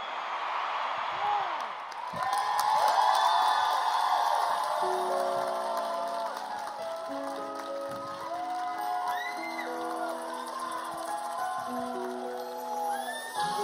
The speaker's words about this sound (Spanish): Y en el otro lado del país, en Los Ángeles, hay una persona muy especial. Quiero que la recibamos de aquí en Miami para que ella oiga esos aplausos. Jennifer López.